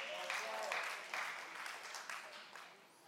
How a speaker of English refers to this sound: I love the golf claps. Keep them coming.